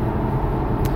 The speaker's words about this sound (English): You in the car? Yep. I'm cruising down south for Thanksgiving. So. Well, that's cool. Again, heading out to Lynchburg homestead. Yep. Yep. Cool. It's a journey. It's 4.5 hours